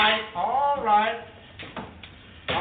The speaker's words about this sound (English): All right. You got that door closed again, huh?